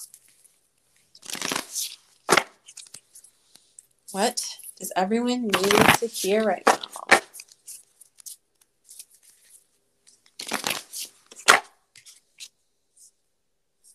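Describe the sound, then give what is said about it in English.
Oracle cards being shuffled in quick, papery bursts, with a short spoken question in the middle and brief pauses between the shuffles. “So with that, I'm going to go ahead and shuffle.”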